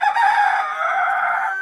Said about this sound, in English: That word, it's thought, likely came from the sound of a rooster, the cock-a-doodle-doo. And you can even see that in French, like in French, coq is cocorico, is the sound of a coq in French.